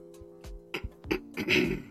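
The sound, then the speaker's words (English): Someone clears their throat in a series of short, rough bursts that build into a longer, raspy rumble at the end, with a steady low hum underneath. “I gotta clear my throat.”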